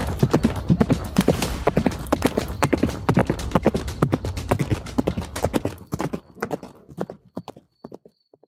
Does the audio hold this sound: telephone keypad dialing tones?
no